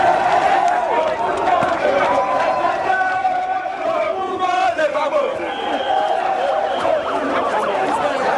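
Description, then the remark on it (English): A huge crowd of supporters following Charles Blé Goudé after his speech at the main stadium roars continuously, many voices shouting and chanting together in a dense, loud wall of sound with overlapping calls and no single clear speaker. “Charles has just left the main stadium where he did his speech and a huge crowd has followed him.”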